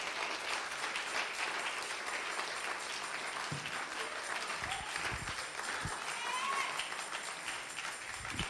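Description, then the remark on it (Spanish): An audience claps steadily in sustained applause, a dense, continuous wash of many hands filling the room for several seconds, with a few voices faintly mixed in. “Démosle un fuerte aplauso a nuestro Dios.”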